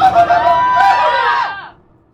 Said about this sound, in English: He presses the emergency stop button. The kid started yelling, grabbing onto the side of the elevator as the elevator came to a sudden stop.